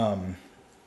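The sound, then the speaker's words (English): A short, groaning creak from a chair, a low tonal squeak lasting about a third of a second before trailing off into quiet background hiss. “Man, this chair is noisy.”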